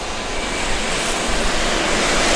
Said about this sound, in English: I hold my breath, and after a brief pause, six twin-engine Boeing FA-18 Super Hornets roar to life in unison.